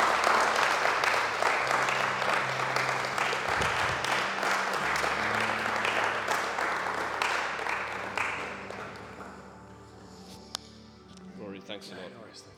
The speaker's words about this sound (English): Well, that's good, hey? Lots of cheer there. I think another round of applause, everyone.